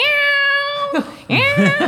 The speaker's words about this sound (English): Then the cat starts meowing at the top of its lungs, like over and over.